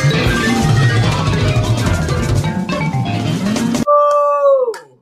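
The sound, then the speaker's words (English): After several seconds of dense, loud noise, a voice in a song imitates a dog with a drawn-out, falling whine-like yelp, then fades out. “Bring the slippers, little puppy. That's a good dog. Barf, barf, barf.”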